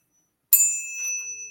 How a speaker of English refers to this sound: I'm gonna ring the bell for you.